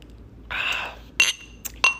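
Glasses clink together in a toast, two quick bright rings, preceded by a soft rustling shuffle; no one speaks.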